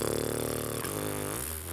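A loud, buzzy tuba blast with an electronic, Moog-like tone holds a low note, then drops to a deeper pitch that wavers and bends slightly as it continues.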